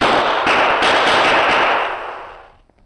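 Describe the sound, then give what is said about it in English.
Several loud gunshots fired by a man in the desert fire in quick succession, their sharp cracks blurring into a roaring, crackling wash of noise that fades away by the end. No one speaks. “Perhaps someone will hear the shots.”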